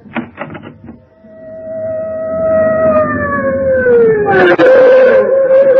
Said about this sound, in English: The fire engine. I wonder why it's stopping here. I tried to tell you, your house is on fire.